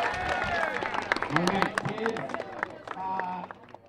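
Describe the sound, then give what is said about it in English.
A crowd in Gridley bursts into steady applause for the Junior Wildcats and the Gridley Grizzlies, dense clapping mixed with whoops and cheering voices, holding loud for several seconds before easing slightly toward the end. “All right, Gridley, how about a round of applause for the Junior Wildcats and our own Gridley Grizzlies?”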